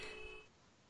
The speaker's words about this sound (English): I don't know if you heard the horn there for someone outside